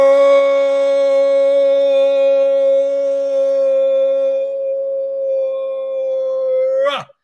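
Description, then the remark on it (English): A crowd of voices lets out one long, sustained roar imitating a lion, held at a steady, tuneful pitch for about seven seconds before sliding down and cutting off. “Count to three. One, two, three. Roar!”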